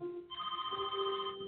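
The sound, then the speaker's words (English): A telephone rings with a steady electronic warble on the morning of September 11th while someone is making the bed, its bright tonal pitches held for over a second, clear with no one talking. “So I was making the bed, and the telephone rang.”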